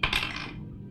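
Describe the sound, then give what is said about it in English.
A single ten-sided die (D10) is rolled and clatters across a hard surface, coming up 6: a sharp, bright rattle of two or three quick hits that fades within about half a second. No one speaks. “Why don't you roll me a D10?”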